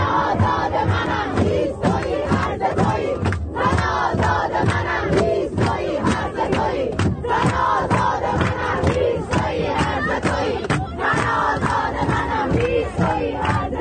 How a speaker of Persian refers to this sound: متروی تهران ساعت 5 بعد از ظهر.